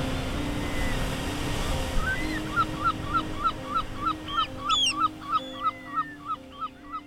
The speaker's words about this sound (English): The air is sonorous with the shuffle of waves and cries of migrant birds.